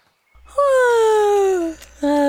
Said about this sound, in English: That was officially the cutest yawn I've ever heard. People do say I have a cute yawn.